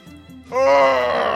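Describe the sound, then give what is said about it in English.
A long, rising vocal groan, the kind let out mid-stretch, swelling from a low hum into a loud, strained moan that holds steady to the end. “Sorry, I'm stretching.”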